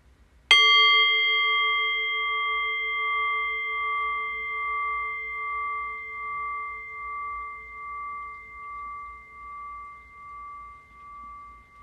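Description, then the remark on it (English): A single meditation bell is struck once, ringing clear and steady, then slowly fades over about ten seconds with a gentle pulsing waver in its tone. No voices. “And so in a few moments' time, I will ring the sound of the bell again.”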